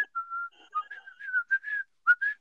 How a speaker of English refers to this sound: You walked into it just whistling like Mickey Mouse